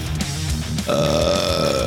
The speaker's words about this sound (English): Like just faithful to my burps. Just like that.